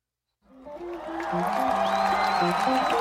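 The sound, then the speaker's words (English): After a brief silence, a dense wash of crowd noise swells in and holds steady and loud over the start of a live song, with sustained notes and a high whistle cutting through. “Ooh, heavy crowd influence.”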